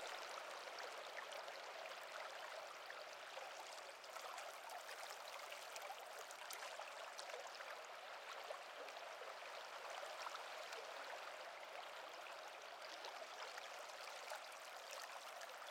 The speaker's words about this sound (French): There's the river running through it. And it's very lovely, that river. Very few people see it except where the bridges are. But it's quite a nice meandering river.